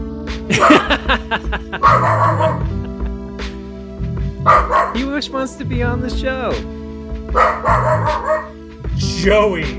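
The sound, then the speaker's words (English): A dog barks repeatedly in short bursts, with yips mixed in, while a person talks over and between the barks. “Full balanced breakfast, and there's the dog.”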